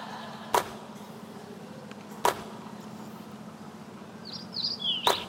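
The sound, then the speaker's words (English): Three brief, crisp swishes of a basketball dropping through the net, spaced a couple of seconds apart over a steady low hum, with a few high bird chirps near the end. “But that sound of the swoosh lets you”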